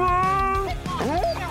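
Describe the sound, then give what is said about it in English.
A Siberian husky howls loudly: a long, steady tone that breaks into wavering, sliding yowls rising and falling in pitch. “A husky's howl can be heard up to 10 miles away.”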